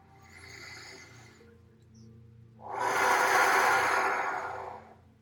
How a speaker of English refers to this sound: Breathing out, two, three, four, and holding, two, three, four. Breathing in, two, three, four, and holding, two, three, four, and exhale, two, three, four.